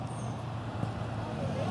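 A bus rumbles amid street traffic, a steady low engine drone that holds fairly constant and swells slightly toward the end.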